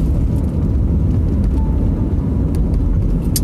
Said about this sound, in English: Fucking school bus.